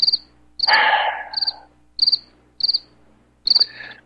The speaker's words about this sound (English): Where are my frickin' crickets. Oh, that's good. That's good.